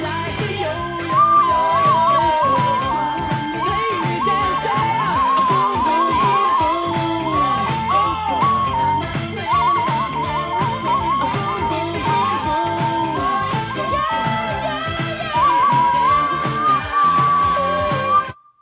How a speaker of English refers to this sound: You're getting good with that death whistle. Oh, yeah, right? Practice makes perfect.